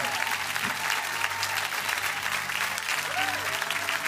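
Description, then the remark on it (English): An audience breaks into sustained applause for people coming out of their seats to pray the prayer of salvation, a dense, steady wash of many hands clapping at even loudness, with faint voices and a few tonal murmurs blended underneath. “Give them a big clap right now.”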